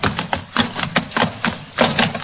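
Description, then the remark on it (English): A lantern smashing: a rapid, irregular run of sharp crashes and clattering thumps over about two seconds, loud and with no voices. “The lantern smashed.”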